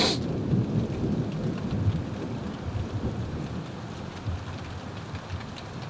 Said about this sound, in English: And that's why I stop and swim in the lake and sit under this boulder and watch this rain. Listen to this thunder.